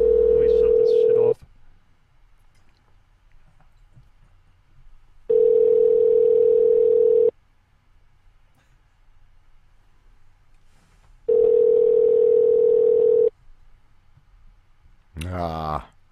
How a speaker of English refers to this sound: I don't think they're answering. I'm surprised it's ringing.